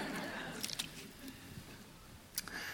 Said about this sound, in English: Great. It gives me a chance just to have a quick swig of water while you do.